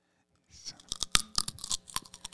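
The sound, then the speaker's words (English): Loud crunching of a raw carrot being bitten and chewed, a rapid series of sharp, crackling snaps over about two seconds, with no voices. “You know I'm going to answer you with a crunch instead of real work.”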